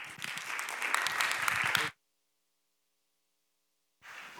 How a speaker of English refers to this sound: And so I'm just thrilled to introduce him today, if you'd give him a round of applause.